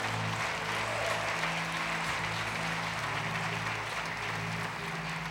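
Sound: audience clapping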